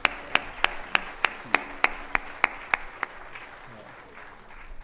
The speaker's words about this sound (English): And so just want to give them another round of applause for everything they did.